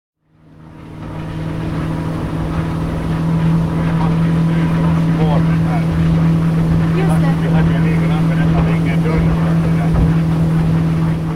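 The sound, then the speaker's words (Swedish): A motorboat engine drones steadily and loudly, fading in at the start and then holding a constant throbbing hum over rushing water and wind noise, as the boat is driven out to a cottage in the Pellinge archipelago by the former CEO of Moomin Characters. “Krista Timgren kör båt ut till sin stuga i Pellinge-arkipelagen.”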